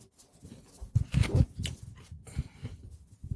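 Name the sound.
crunching food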